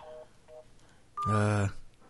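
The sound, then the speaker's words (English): A couple of short, faint two-pitch dialing beeps from a cell phone calling Media Blasters, whose number is out of service, followed by a louder, buzzy tone that holds for about half a second. No one speaks. “Let's try this shit out. Dialing.”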